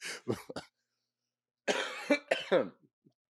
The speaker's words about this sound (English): You might have noticed the cough. I am battling something, and I don't know if it's allergies, because I never got allergies till last year.